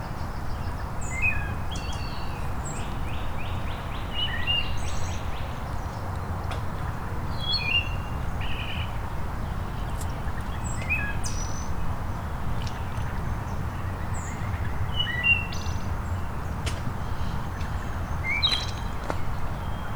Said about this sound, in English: There's our water thrush again. And a red-winged blackbird.